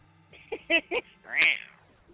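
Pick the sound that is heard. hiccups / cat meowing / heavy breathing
cat meowing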